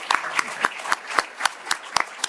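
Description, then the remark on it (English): An audience applauds the panelists, including Josh Hale, in a steady round, a dense wash of clapping with one set of sharp, evenly spaced claps standing out about four times a second. It is moderately loud and there is no talking. “Okay, let's give our panelists, let's give Josh Hale a big round of applause.”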